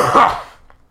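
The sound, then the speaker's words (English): A single loud cough with a rough throat-clearing rasp, lasting under a second before fading into quiet. “What do you, God, Mr. Cough-a-lot?”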